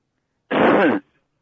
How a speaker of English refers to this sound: Okay, if you're one of them spies and stuff, then cough once. If you're not, then cough twice.